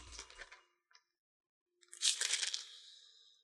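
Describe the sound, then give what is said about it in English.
Paper pages of a Bible being turned to Proverbs 1:23: a short crisp rustle, a faint tick, then a longer, louder papery swish that trails off. Bright and crinkly, with no voices. “Turning there in my Bible.”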